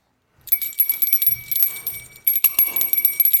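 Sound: bell ringing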